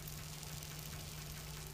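Salmon sizzling in a pan: a quiet, steady hiss with faint scattered crackles, carried over a low constant hum for the whole stretch, with no talking.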